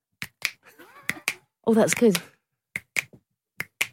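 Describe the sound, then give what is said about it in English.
Two people snap their fingers together, sharp crisp clicks landing in slightly offset pairs at a steady beat, about eight snaps in all, with a short spoken remark partway through. “That's the two of us clicking together.”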